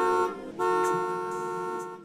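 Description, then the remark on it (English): A car horn honks twice, a short blast and then a long, sustained one, with a steady, brassy, buzzing tone and no voices. “We hear them when we're driving and someone is not too happy.”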